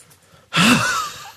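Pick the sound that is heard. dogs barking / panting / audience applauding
panting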